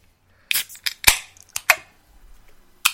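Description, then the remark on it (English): Several cans of beer, Double Jack double IPA by Firestone Walker, crack open one after another, each a sharp metallic snap with a brief fizzy hiss, spaced irregularly with short quiet gaps and no talking. “Okay, crack them open.”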